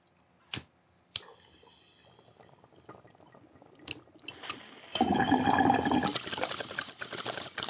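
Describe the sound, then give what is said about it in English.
Two sharp clicks, then quiet rustling, followed by a steady gurgling of bong water bubbling as someone takes a bong hit for the last few seconds, loud and continuous. “Why don't we all rip the bong?”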